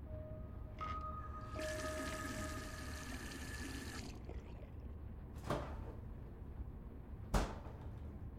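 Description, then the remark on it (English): Quiet handling sounds of a water bottle being fetched: a steady rushing hiss, then two sharp knocks a couple of seconds apart as it's set down and handed over, with no talking. “I take a bottle of water.”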